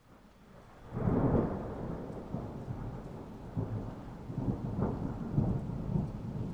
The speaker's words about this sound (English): Lightning. Thunder.